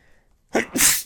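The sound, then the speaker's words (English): A single loud sneeze during a live radio broadcast: a quick sharp intake followed by a forceful, hissing burst, with quiet before it and no talking. “Every once in a while, I have a live radio sneeze, and I love it.”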